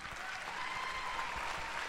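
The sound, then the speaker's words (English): An audience bursts into steady, dense applause with scattered cheering mixed in, a continuous wash of clapping that holds at an even loudness throughout. “Don't cheer.”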